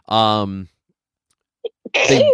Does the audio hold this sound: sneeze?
yes